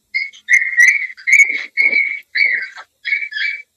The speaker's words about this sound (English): I thought you had a bird for a minute. I was like, you also got birds? Wow. They're squeaky little puppies.